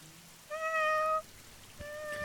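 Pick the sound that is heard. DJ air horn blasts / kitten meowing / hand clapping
kitten meowing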